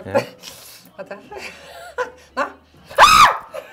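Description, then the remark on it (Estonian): A person lets out a short, loud, high-pitched scream near the end while trying to catch a ball. The scream follows a stretch of breathy giggling and scattered vocal sounds. “Aga miks see koos karjumisega nad vist teilke?”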